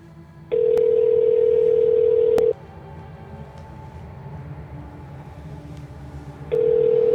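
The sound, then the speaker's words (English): A telephone ringback tone from an outgoing phone call: a steady, loud, mid-pitched hum plays for about two seconds, stops for four seconds, then starts again. A low rumbling noise of trucks runs underneath, and no one speaks. “I think you'll at least be able to hear it ring.”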